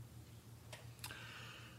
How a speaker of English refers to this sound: Oh, the clock's moving again. And ready.